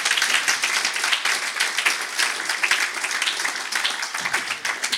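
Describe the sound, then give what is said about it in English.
A crowd claps hands in praise steadily and energetically for several seconds, a dense, continuous wash of applause with no speech over it. “I want you to clap your hands and give him praise right now.”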